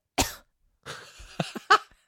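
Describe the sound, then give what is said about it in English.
A dog with kennel cough or allergy cough coughs in harsh, raspy bursts: one sharp hack, a rough wheezing stretch, then a quick run of three choppy coughs, with no talking. “Kennel cough. Allergy cough. That's why I make noise like that.”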